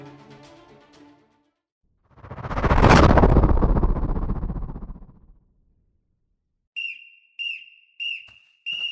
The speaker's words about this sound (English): A whistle sounded and the prisoners' barracks erupted into activity. All the Jews scrambled out of bed and rushed to get themselves ready for the day.